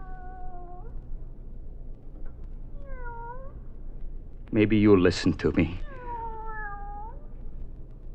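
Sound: cat meowing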